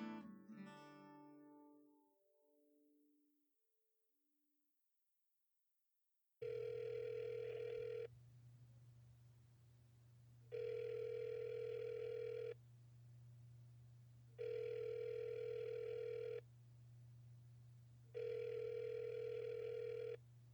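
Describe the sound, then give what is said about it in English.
A phone rings in a steady pattern, four electronic ring tones of about two seconds each separated by short pauses, over a constant low hum, after a brief fading tone and a moment of silence. “I'm probably rooting through my bag trying to find my phone right now, and I'll answer in 3, 2, 1”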